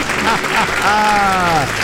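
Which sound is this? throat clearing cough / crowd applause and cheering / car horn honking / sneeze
crowd applause and cheering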